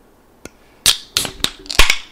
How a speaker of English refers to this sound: With that said, do we want to get the signature can crack?